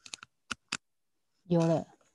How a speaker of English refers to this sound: Yeah, how come I cannot type in Chinese? I'm typing. It's not working for me.